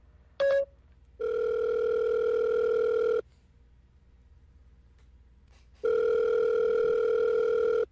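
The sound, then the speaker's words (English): A telephone ringtone: a steady electronic tone sounds in two-second bursts separated by silence, preceded by a short blip. It's clear and fairly loud, with no one speaking. “What was that ringtone?”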